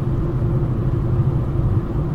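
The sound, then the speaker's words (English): A steady, low engine rumble fills the interior of a moving car, a constant dull drone with road noise and no voices, holding even throughout. “Right around the time this car's paid off that I'm driving right now.”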